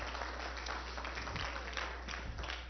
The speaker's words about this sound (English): Right, give him a hand clap and stand with me.